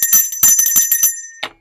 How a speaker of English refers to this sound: We gotta wake, where's my bell?